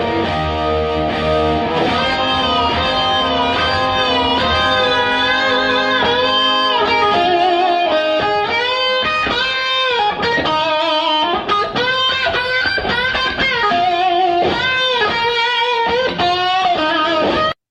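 A loud, overdriven electric guitar plays a bluesy solo on its own, with sustained bending notes and quick runs ringing out with heavy reverb, steady throughout.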